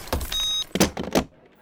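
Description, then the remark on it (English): A car's mechanical sounds: a steady whirring hum like a power window, followed by a few sharp, clattering bursts. No one speaks. “I'm taking your car.”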